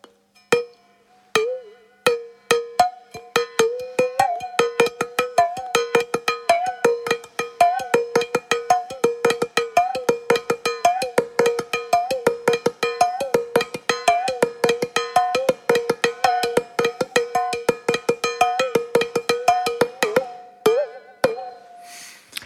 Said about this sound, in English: So just to explain, you have the stem in your mouth, yeah, and you're banging the membrane on the bottom, and then with the different kind of air, you know, changing that sound. Yeah, just bending it.